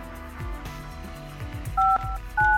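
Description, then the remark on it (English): Two short dual-pitched telephone keypad tones beep in quick succession near the end as a phone call is dialed, sounding clear over a low, busy background hum of music or room noise. “I'm going to make a phone call here real quick and hope I pronounce your name right, or if it is a lady.”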